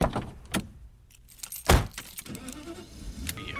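Someone gets into a car: keys jingle, a door closes with a heavy thud, and then an engine starts up and settles into a low, steady rumble. Nobody speaks.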